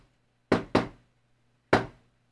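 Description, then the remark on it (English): Three sharp, fairly loud knocks on a door in a deliberate pattern: two quick raps, a pause, then a single knock, with a faint low hum underneath and no voices. “They're knocking in that special way again.”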